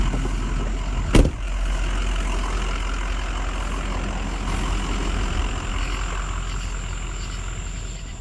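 A truck engine idles with a steady, low rumble, broken by a single sharp knock early on, then keeps running evenly to the end.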